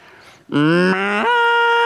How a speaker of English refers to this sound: And all of a sudden, I hear a faint sound, and it sounded like this. And then the cow made this ungodly sound.